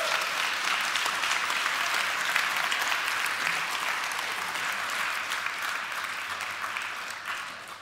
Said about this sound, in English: Let's have a round of applause for God's goodness.